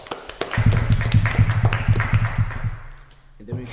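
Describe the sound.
A run of steady, rhythmic hand claps, about a dozen close together, loud and near, over a low voiced murmur, then fading out into a quieter stretch.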